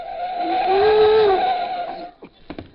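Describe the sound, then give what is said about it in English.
A comic sound effect of someone sliding down a stair banister: a loud, sustained tire-like skid squeal that bends slightly in pitch for about two seconds, then a few quick clattering bumps. No one speaks. “I'll slide down the banister.”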